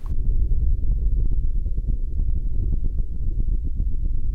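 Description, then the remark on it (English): An active underwater volcano captured by hydrophone: a loud, continuous deep rumble with dense crackling pops and thuds bursting through it, steady throughout with no voices. “But this is the sound of a real, active underwater volcano.”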